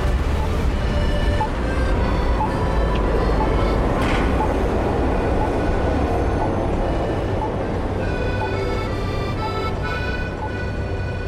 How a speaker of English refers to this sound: Some people say white Zagreb. Some say that blue is the color of Zagreb. Maybe because of the trams which were once all blue. Now they carry advertisements for sausages, cosmetics. Riding alone in a tram for me was an experience.